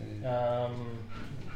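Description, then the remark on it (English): A dog whimpers, a drawn-out high whine with a brief yip toward the end, heard on its own without talk over it. “the dog's come to say hello.”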